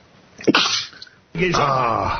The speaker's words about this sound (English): Excuse me. I must have some allergies. Exactly. I have one more in me. Isn't it funny how there's never just one sneeze? Ready?